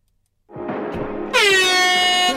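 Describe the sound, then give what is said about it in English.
A quiz buzzer horn sounds alone: a buzzy tone starts, then jumps into a loud, bright, steady blare rich in harmonics that holds without a break to the end. “Hands on buzzers.”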